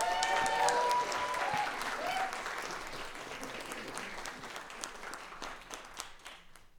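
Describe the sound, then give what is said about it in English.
A church audience breaks into sustained applause welcoming a guest pastor to speak, a dense patter of many hands clapping that starts loud with a few cheers and gradually thins out, individual claps becoming more distinct as it fades. “So can you give the greatest love in your heart, round of applause,”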